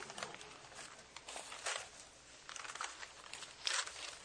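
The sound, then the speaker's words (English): Papers rustle and shuffle in a string of soft, crinkly bursts as a preacher sorts his papers during a Bible teaching, with a few sharper flicks standing out, fairly quiet and with no voices over them. “Get these papers here.”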